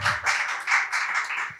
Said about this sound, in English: Round of applause for finishing college, guys.